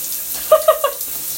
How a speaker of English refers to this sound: You know when you're hungover and you just sit in the shower? Yeah, that's what I'm doing.